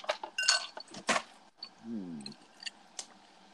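A drinking glass of Captain Morgan white rum on the rocks clinks several times in quick, uneven taps, some with a short bright ring, with a brief low voice murmuring in the middle.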